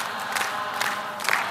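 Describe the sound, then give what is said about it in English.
An audience claps together in a steady rhythm, sharp bursts about every half second over a continuous murmur of crowd noise. “You can quit clapping.”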